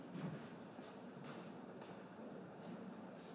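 A steady, low rumble of a train rolling along the tracks, with faint rhythmic clacks every half second or so, and no voices.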